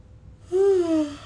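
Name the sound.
a long yawn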